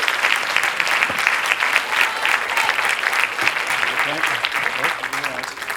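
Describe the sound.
Sustained audience applause fills the room, a dense steady wash of many hands clapping at close range, with faint voices murmuring beneath it toward the end.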